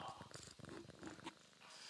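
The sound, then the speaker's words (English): A male domestic cat, held up to the microphone, purrs, a steady, rhythmic low rumble pulsing through the whole short stretch with a little breathy texture on top. “So I was glad to see you got the cat in here now.”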